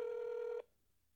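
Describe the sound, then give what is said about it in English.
A single steady ringback tone sounds on a telephone line during a call to a New Jersey number, a flat electronic buzz that holds for about half a second and then cuts off into quiet line hiss. “It's ringing.”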